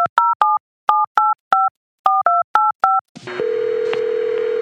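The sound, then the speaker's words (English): A quick run of about a dozen touch-tone keypad beeps in uneven clusters, followed by a steady, hissy phone-line tone as the call connects. No one speaks. “I've decided to interview him over the phone, wherever he happens to be.”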